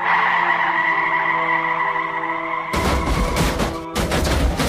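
A loud, sustained tire screech from a car at an intersection holds for a few seconds, then breaks into a violent, noisy crash of crunching impact as it collides with another car, one car having run a red light. The crash briefly cuts out before resuming. No voices.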